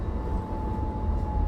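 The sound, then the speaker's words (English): A tram rolls along with a steady, heavy low rumble and a thin, constant electric whine riding above it, continuous throughout, with no voices. “Ah, but that's not just any old public transport. That is a tram, I can absolutely guarantee.”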